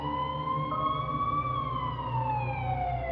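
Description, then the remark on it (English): An ambulance siren wails loudly and steadily, its pitch gliding up and then slowly sinking, over a low rumble of road traffic with no voices. “The ambulance arrived within minutes and took her to the hospital.”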